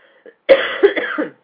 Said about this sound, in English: I'm going to cough.